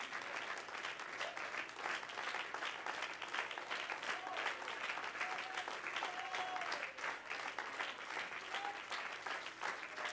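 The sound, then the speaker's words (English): A standing audience claps their hands to the Lord in worship steadily for about ten seconds, a dense, even wash of many hands, with scattered faint cheers and voices rising over the applause. “Everybody stand and clap your hands to the Lord today.”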